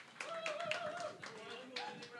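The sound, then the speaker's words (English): Scattered hand claps ring out in a loose, uneven patter, a small group applauding trivia team number 4 for winning with 8 points, with murmuring voices and a faint whoop running underneath. “Round of applause, team 4.”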